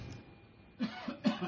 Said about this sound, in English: I had a cough.